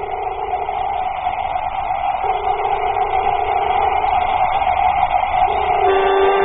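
An airlock being exhausted of air until the air pressure reaches zero: a steady, loud rush of hissing air with droning mechanical tones underneath, continuing unbroken for several seconds with no voices.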